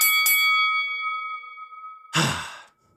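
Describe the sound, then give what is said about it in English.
A bell is struck twice in quick succession, its clear metallic tone ringing out and slowly fading over about two seconds, followed by a short breathy exhale. “Ring the bell.”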